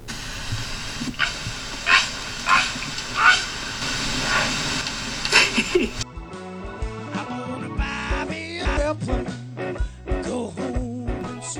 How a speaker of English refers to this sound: but this bird, when I get anywhere near him, flies off and makes a sound very, very evident that he is displeased with me bothering him. And this is the sound the bird makes when he flies off.